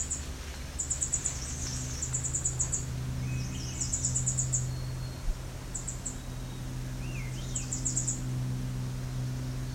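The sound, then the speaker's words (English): Two Swainson's thrushes sing back and forth at each other, one on the north side of a trail and one on the south side, their rising, spiraling phrases standing out against repeated high, rapid chirps and a steady low background hum. No one speaks. “So that's three Swainson's thrush.”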